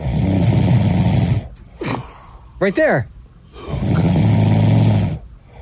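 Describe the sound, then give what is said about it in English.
Two long, loud, rasping snores from a man, each a drawn-out rattling inhale, with a brief spoken remark in the pause between them. “How you get great sleep like that, bro? He does sound, there's a moment in between the snores, though.”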